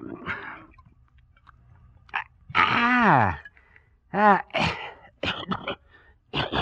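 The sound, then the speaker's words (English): A man chokes and sputters after taking a swig of a drink and swallowing wrong: a strained, wavering groan followed by a gasped exclamation and several harsh coughing bursts, loud and uneven in rhythm. “Oh, my, you swallowed wrong, huh?”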